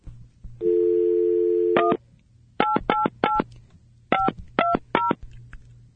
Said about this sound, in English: I'm dialing.